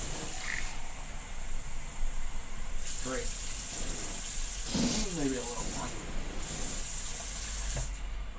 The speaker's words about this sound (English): I gotta let my hot water go a little bit, it's very cold outside.